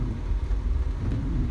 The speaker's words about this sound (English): I feel like the storm is not as bad over here.